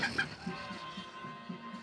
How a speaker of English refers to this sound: It was like a mini cockfight. Haha. Literally, because I raised mini chickens.